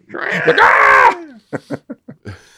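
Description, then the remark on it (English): The mayor rings the doorbell at Jack's house in Halloween Town; it lets out a loud, shrill, wavering shriek like a woman screaming, lasting about a second, followed by a few short bursts of someone talking. “And he rings the doorbell. Which made me laugh because it's like a woman screaming.”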